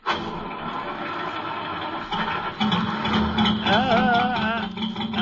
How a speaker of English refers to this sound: That didn't take long. If I can just keep the motor running until it warms up.